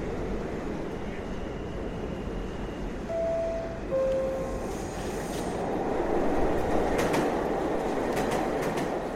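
A subway train rattles steadily along the rails with a loud, continuous rumble, brief squealing tones partway through, and sharper clattering clicks toward the end.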